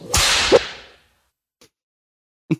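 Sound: whip crack sound effect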